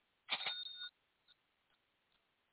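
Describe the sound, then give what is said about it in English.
A bright cash register ring opens with a quick mechanical clatter, then a sustained metallic bell tone that fades out, followed by a few faint clicks in otherwise quiet surroundings. “Is that a cash register? Yep, it's bad for business.”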